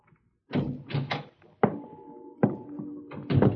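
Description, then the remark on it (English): Several heavy, booming thuds as a person's body bangs against a hollow steel drum outside a cabin, each hit ringing with a metallic resonance. The blows come irregularly and loud, with no one speaking. “I banged against the steel drum, and the noise it made shattered the silence.”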